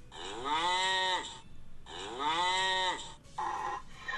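A cow moo sound from the Tudder dating app plays as cows are rated by swiping: two long, drawn-out, falling moos, followed by a shorter, lower moo. The sounds are loud, with no talking.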